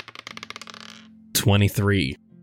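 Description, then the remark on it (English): Red dice clatter across a hard surface in a quick burst of clicks that slow and settle within a second, followed by a short, loud vocal exclamation. “I'm going to have you do the lady in red and the man with the top hat first and do a separate roll for the man you just saw.”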